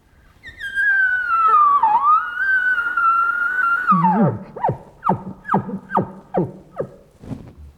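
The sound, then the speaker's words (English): A bull call imitated by breath through a latex call and grunt tube: a long, high, whistling tone that wavers and slides down, then breaks into a string of about seven short, rhythmic grunting chuckles. “and the stretched latex of the call, manipulating the sounds to scale from an ultra-high-pitched beginning into a gentle wave of tones.”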